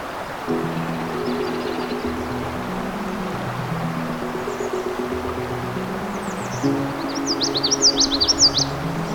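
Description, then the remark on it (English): Bright, high songs of migrant warblers and other songbirds trill and chirp in quick bursts along Crane River at Johnson Harbor, growing busier toward the end, over a steady low rumble like a motor or flowing water. “In this final episode of the season, we'll continue to listen to the migrant warblers and other songbird species.”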